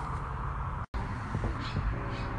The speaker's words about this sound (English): Those birds you hear in the background, those are black-tailed grackles. They are all over Las Vegas. They're the loudest birds you'll ever hear.